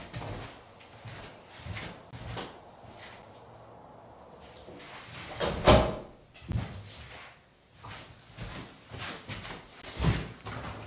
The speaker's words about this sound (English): So let me just shut this door and I want to talk to you about some fights that we've got planned.